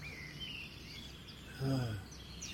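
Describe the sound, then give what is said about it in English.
Faint bird chirps come from outdoors, a few thin high calls scattered across a quiet background, with a brief low murmur rising in the middle. “The birds are good.”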